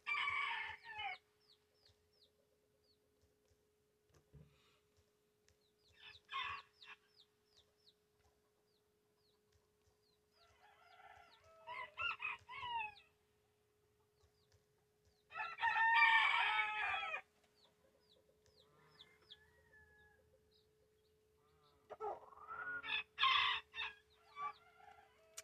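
Chickens cluck in short, scattered bursts with quiet gaps between, and a rooster lets out a loud, drawn-out crow in the middle. A steady low hum runs underneath, and no one speaks.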